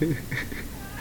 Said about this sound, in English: See, she's just literally standing at the door. Please, sir, can you pet me? Nope. You're messing with our cords. Fuck you. Yep, meow. You can meow somewhere else.